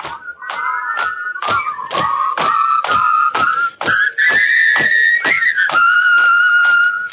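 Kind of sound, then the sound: human body sound, man whistling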